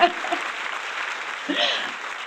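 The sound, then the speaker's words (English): An audience applauds in a steady, dense wash of clapping for about two seconds, with a few brief voices rising above it, one near the start and one toward the end. “And now it is my turn to ask the audience to give you a huge round of applause that you have so deserved.”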